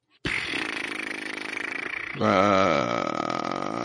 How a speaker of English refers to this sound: That sounds like a seal. It's a good guess.